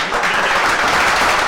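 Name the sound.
round of applause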